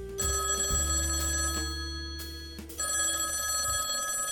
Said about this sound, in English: So it totes pissed me off when my phone rang at 11 o'clock in the morning.